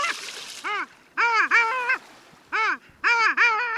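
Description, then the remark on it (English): A small cluster of long-tailed ducks, sea ducks dressed mostly in white, about 100 yards out on a bay on a clear, quiet winter morning, calling in a loud, yodeling chorus of rising-and-falling nasal notes, in quick bursts of two or three with brief pauses between, clear over a quiet background. “They're long-tailed ducks, back for the winter from nesting far to the north.”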